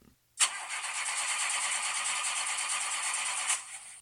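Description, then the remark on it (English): An old truck engine cranks with a loud, rapid grinding churn for about three seconds, then cuts off abruptly without catching or settling into an idle. “Truck won't even start.”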